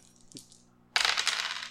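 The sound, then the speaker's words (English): Dice clatter and tumble across a hard table in a quick, loud, rattling burst after a brief soft tap and a moment of near-silence, landing on a four and a two. “Oh, so that's a four and a two. That's six”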